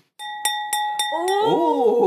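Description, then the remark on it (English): A glass rings out with a clear, sustained tone as it is tapped four times in a steady rhythm; a voice joins in toward the end over the lingering ring. “We got a glass now. Do the ding ding.”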